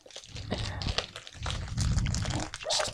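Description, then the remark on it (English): Continuous crunching and crackling as dry snack noodles are crushed inside a crinkly plastic bag, which is opened slightly to let out air, with irregular bursts of rustling and brittle snapping and no clear talk. “Crunch them up. Yeah, I think so. Let's open it a little because there's a little bit of air in there.”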